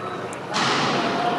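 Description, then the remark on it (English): A sudden loud gunfire bang cuts in partway through, followed by a sustained burst of harsh, noisy blasts that stays loud to the end, over a murmuring background, at Joel Osteen's Lakewood Church in Houston on a Sunday afternoon, just before a Spanish-language service. “Gunfire blasts ring out just before a Spanish language service was about to begin at Joel Osteen's Lakewood Church in Houston Sunday afternoon.”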